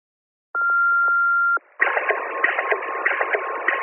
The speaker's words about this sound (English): That, my dear brother, is the sound of water being pumped out of the basement all day.